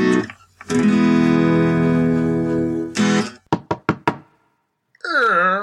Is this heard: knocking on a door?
yes